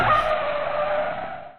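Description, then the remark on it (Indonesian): A car brakes hard with a loud, sustained tire screech that holds steady for over a second, then fades out. No voices are heard. “Rem langsung. Iya langsung.”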